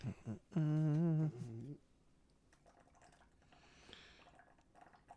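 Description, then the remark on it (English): Someone gulps down a drink: a loud, wavering throaty tone from the swallowing, then softer wet clicks and drips as the drinking trails off. No one speaks. “I'm guzzling.”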